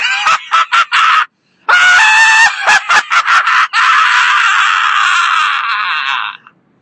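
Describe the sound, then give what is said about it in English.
A man lets out a loud, raw primal scream, starting with a few choppy bursts and a brief pause, then breaking into one long, strained howl that trails off. “I will let loose with the Friday Drive Home Primal Scream on a Book Wednesday”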